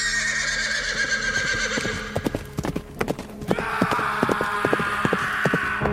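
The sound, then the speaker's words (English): A horse whinnies loudly, followed by a quick series of hooves clip-clopping at a galloping rhythm, with a second neigh near the end; no one speaks. “Before his startled eyes, a white mist burst forth from an unmarked grave and formed into a large horse carrying a headless rider.”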